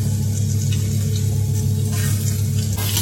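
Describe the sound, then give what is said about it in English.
A steady sizzle of leftover cabbage and mince being stir fried in a hot pan, with a constant low hum underneath and occasional scraping or stirring sounds, no talking. “And over here I've got the leftover cabbage and mince, and I'm just stir frying all that, and then I'll pop that into containers for lunches and breakfasts.”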